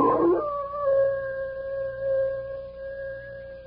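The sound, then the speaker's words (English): A single big old wolf howls in one long, steady, sustained note that holds its pitch, against a faint low hum, with no voices present. “Bill, listen to that old wolf out there.”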